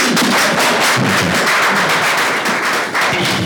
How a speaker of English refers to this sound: Please clap for him.